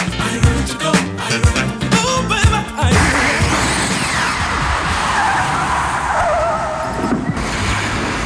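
A DeLorean car skids loudly to a stop, tires screeching and scraping for several seconds, after a short burst of rattling, clattering engine noise. No one speaks.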